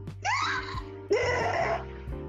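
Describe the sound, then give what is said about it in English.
Someone screams in two long, shrill bursts, the second starting just after the first ends, each with a wailing, rising-and-falling pitch over a low steady hum. “I'm actually about to mute myself with my cheerleader screaming in the background.”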